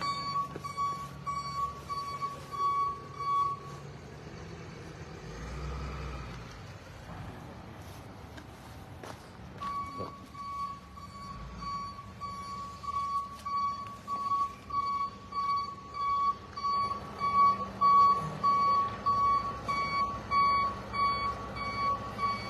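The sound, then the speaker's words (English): A tow truck reverses with a steady, repeating high backup beep that pauses briefly and then resumes, over a low rumbling engine and outdoor background noise, as it comes to tow a suspect's vehicle at a police scene in East Greenwich. “and now they're going to tow the suspect's vehicle.”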